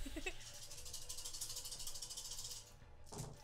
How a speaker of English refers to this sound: This is why sometimes people double the dice. Yeah, it's fun to roll them all. It's a satisfying noise.